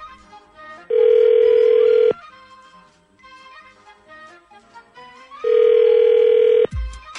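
A phone call placed by the Z Morning Zoo radio show on Z104 rings out with two long, steady ringback tones, each a little over a second, separated by a pause of several seconds, while soft music plays underneath.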